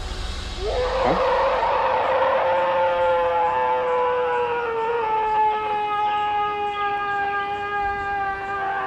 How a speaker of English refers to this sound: It's a long, drawn-out howl. It lasts about 9 seconds.